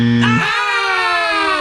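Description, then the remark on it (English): A game timer buzzer blares loudly and continuously, a harsh, harmonic-rich electronic tone that jumps from a low hum to a higher steady pitch early on and holds for over a second. “Mine went over the buzzer!”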